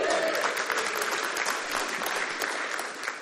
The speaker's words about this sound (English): You can give him a round of applause if you want.